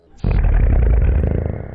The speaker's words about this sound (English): That was a slow-mo fart.